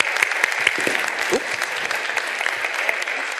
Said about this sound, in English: So with that, I'd ask you to please warmly welcome them with a warm round of applause as we welcome our group of panelists here today.